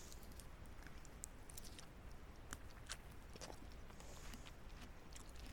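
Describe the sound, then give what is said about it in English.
Someone chewing sweet food, with soft, irregular crunching and smacking sounds over a steady low background hiss. No one speaks. “No, I'm chewing.”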